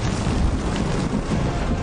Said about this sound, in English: Thunder rolled, lightning flashed, and the mountain shattered.